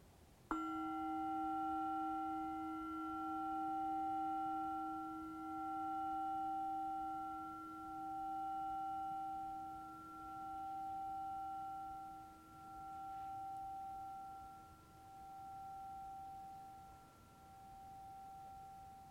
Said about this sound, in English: Last few breaths, stay as the bell goes off.